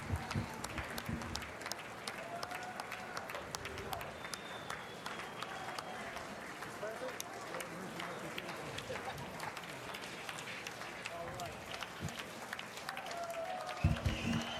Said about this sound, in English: Biden delivers State of the Union. Here we go, they're cheering, man. They're cheering. Oh, they're cheering.